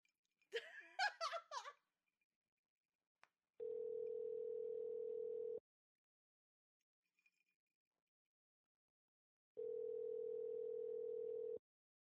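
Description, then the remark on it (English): A short burst of giggling laughter and a click, then a telephone tone while calling a woman back: two steady, even-pitched buzzing tones, each about two seconds long, separated by a few seconds of silence. “Let's call her back.”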